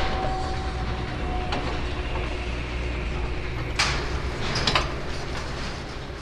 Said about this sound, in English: Environmental protection doors now closed.